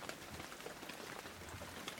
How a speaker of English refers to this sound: Poets go on about the pitter-patter of rain as they drift off to sleep.